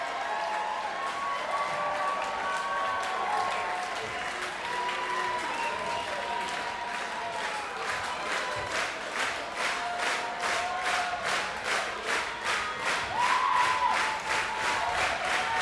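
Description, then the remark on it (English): A large crowd applauds and cheers continuously, with dense clapping that grows into a more rhythmic, unified beat toward the end, and voices shouting within the din. “If I simply described it as a couple of pigs in leotards asking the crowd if they want more, it would seem silly.”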